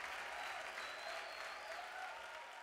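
Thunderous applause from a theater audience at the end of a play, a dense, steady roar of many hands clapping that stays loud and unbroken throughout, with faint crowd murmur beneath and no clear talk.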